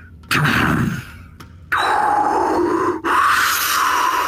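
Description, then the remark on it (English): A voice imitates a rush of air from opening doors as the air pressure changes, with breathy, hissing whooshes: a short burst, then a long sustained exhale, broken by a brief gap and continuing loudly to the end. “as the air pressure changes, all of your hairs are kind of blown back just a little bit, as a very fresh, kind of vibrant, tinged with metal smell rushes out at you.”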